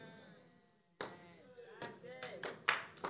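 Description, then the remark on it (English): An audience bursts into clapping after a brief pause, the applause coming in rising waves of sharp, noisy claps mixed with raised voices calling out. “Don't clap yet.”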